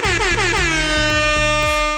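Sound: air horn blast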